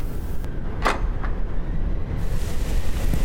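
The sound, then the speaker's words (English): Storm wind roars steadily, a dense low rumble that never lets up, with a couple of brief sharp knocks early on and no voices. “The storm doesn't seem to be dying down too much”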